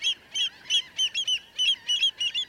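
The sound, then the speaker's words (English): Thousands of gulls, terns and shorebirds call over the shallow waters and wide mudflats of the Bolivar Flats Shorebird Sanctuary, Bolivar Peninsula, opposite Galveston, Texas, in a quick, steady series of sharp, nasal notes, about four per second, clear over a soft, low background hush. “The shallow waters and wide mudflats before us this day are alive with thousands of gulls, terns, and shorebirds.”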